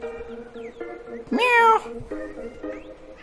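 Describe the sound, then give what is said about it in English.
A male house cat lets out one loud, drawn-out meow with a rising then falling pitch, reacting to hearing a bird, standing out clearly over a quieter background of steady tonal sounds and faint voices. “Whoa, my cat is meowing at me because he hears the bird.”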